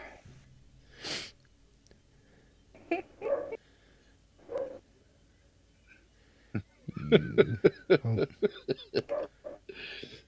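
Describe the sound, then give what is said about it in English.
A dog lets out a few scattered barks, then a quick run of short, sharp yips and barks, with no one talking over them. “Your dog does sound kind of like it's saying quah.”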